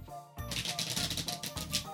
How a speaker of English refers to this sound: So here's for the fans of the bit. Here is the good shuffle.